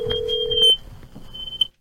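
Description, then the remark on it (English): A single steady ringback tone sounds through a phone line for under a second, then cuts off, leaving faint line hiss and a thin high whine with no talking. “Ringing. Again.”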